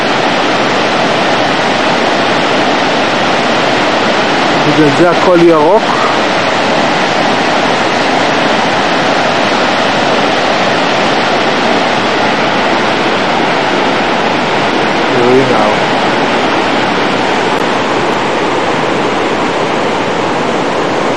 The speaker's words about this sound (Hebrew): מים זורמים פה מכל מקום, כמה מים, כמה מים.